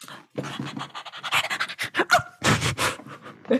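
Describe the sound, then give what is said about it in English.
A dog pants and huffs, a rapid series of loud, breathy bursts with a few short whiny catches, continuing without pause and with no voices. “That's a cute dog.”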